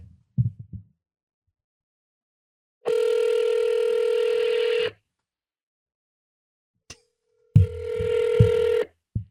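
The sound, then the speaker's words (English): A few soft clicks of dialing, then a long steady electronic phone ring, a brief beep, and a second ring tone with low thumping underneath. No one speaks. “Why don't I just give them a call?”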